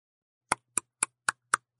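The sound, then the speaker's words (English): Five sharp, evenly spaced knocks on a wooden door, clear, each a short hollow rap with a brief resonance, with silence before them and no voices. “He knocked on the door.”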